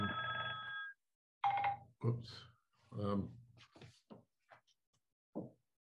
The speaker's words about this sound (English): So yeah, I'm not surprised your phone's ringing